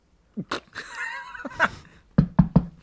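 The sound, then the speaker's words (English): Officials knock impatiently on a man's door, three quick, firm, loud knocks in rapid succession, coming after a brief wavering tonal sound and a couple of softer thuds. “Another, less patient, I presume, knock.”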